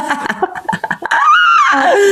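A man lets out a loud, close scream that swells up in pitch and then slides back down, held for about a second after a burst of choppy, breathy vocal sounds.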